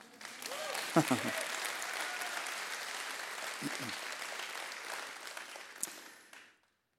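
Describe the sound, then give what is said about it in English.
A church audience breaks into sustained applause, a dense steady patter of many hands clapping with a few voices calling out over it, lasting about six seconds before stopping abruptly. “That's something we can clap for, by the way.”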